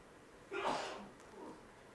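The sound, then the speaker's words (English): A single sharp sneeze bursts out against quiet background hiss, followed a moment later by a softer, shorter breathy sound. No one speaks. “Bless you.”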